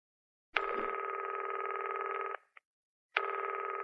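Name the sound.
telephone line tone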